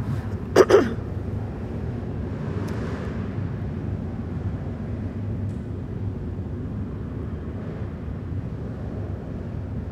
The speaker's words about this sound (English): I think we have some motorcycles going by. Woohoo, San Francisco.